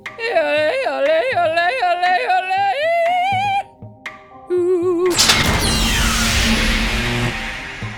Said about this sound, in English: The secret door is voice activated.